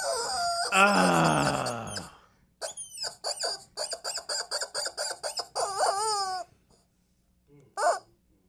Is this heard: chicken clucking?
yes